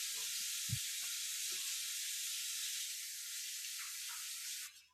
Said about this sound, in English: What? Somebody was washing dishes. I thought it was a sizzling steak.